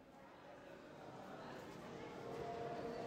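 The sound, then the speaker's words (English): A busy crowd hum of many overlapping voices at a train station about 15 kilometers west of the Poland-Ukraine border, packed with refugees sitting on the floors and walking through the halls; indistinct and steady, echoing, growing slightly louder toward the end, with faint tonal sounds underneath. “We're starting at a train station, about 15 kilometers west of the Poland-Ukraine border. It's packed with refugees, sitting on the floors, walking through the halls.”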